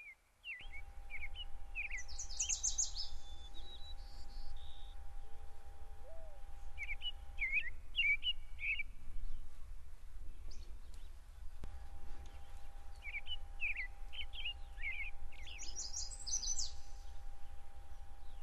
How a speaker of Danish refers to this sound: Nu står du på en smuk, grøn græsplæne. Og du kan se nogle træer rundt omkring. Og du kan høre fuglene synge.